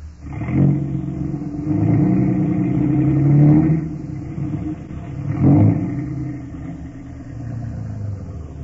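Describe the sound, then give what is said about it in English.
A heavy truck engine drones along a highway, its rumble swelling as the thirteenth truck in a counted line approaches, then surging again as another pass roars by. No voices are heard. “And here comes 13. Next one's our baby”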